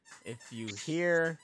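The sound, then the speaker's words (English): A small fostered Chihuahua mix dog named Nemo squeaks for attention in three quick, high-pitched bursts, the last one longer and rising in pitch, with a thin, whiny tone. “We are fostering a little Chihuahua mix. I don't know what it is. And it wants my attention really badly right now”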